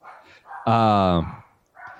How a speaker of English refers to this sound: All right. Dog's chiming in. Yeah. I love it.